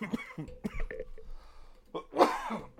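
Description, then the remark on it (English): A rough burst of coughing and throat clearing, several short hacking bursts, with the loudest, harshest cough near the end. “latest coughing fit.”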